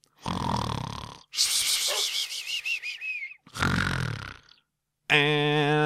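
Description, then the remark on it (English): Loud, rumbling snores alternate with a high, wavering whistle on the exhale, like a cartoonish snore-and-whistle pattern, ending in a sudden steady buzzing tone. No talking. “Let's go to sleep and continue in the morning.”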